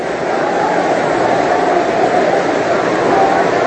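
A baseball stadium crowd at a New York Yankees game roars in a dense, unbroken wash of noise that holds steady and loud for the whole stretch, with no single voice standing out.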